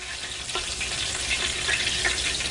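Steady, crackling sizzle of chicken frying in hot grease as a piece is pulled out of the grease, a dense hiss with scattered pops and a few brief clinks, continuous and fairly loud throughout with no talking.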